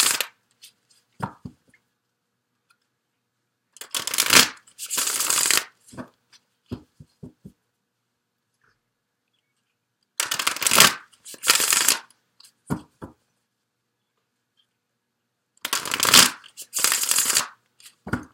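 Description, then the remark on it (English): An animal-themed deck of reading cards is shuffled in three separate bursts, each a loud riffling whoosh followed by a few soft taps and clicks as the cards are squared up, with quiet pauses between. “This is a fun deck.”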